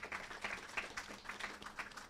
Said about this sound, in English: And so I want to give the speakers just another round of applause. They did an awesome job right now.